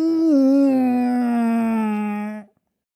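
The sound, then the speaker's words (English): A human voice imitates a drawn-out groan of agony, one loud sustained moan with a strong harmonic tone that sags slightly in pitch before cutting off after about two and a half seconds. “All he could do was grunt, scream in agony and frustration, like a baby groaning for a toy that's just been taken away.”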